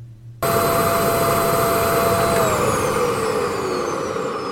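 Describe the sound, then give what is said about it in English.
A vacuum cleaner cleaning a carpet switches on abruptly and roars loudly and steadily, its high motor whine holding then gliding downward in pitch as it keeps running. “What kind of vacuum is that?”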